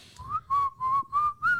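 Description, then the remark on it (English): Someone whistles a short melody: five clear, bright notes in a quick, bouncy rhythm with slight pitch slides between them, and no talking. “That is not the whistle sound they made.”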